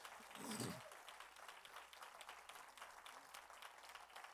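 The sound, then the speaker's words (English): A crowd in a church applauds steadily throughout to show appreciation for staff being honored with gifts, a dense, even patter of many hands clapping at once, fairly soft, with a brief voice near the start. “Would you give them all a clap of appreciation?”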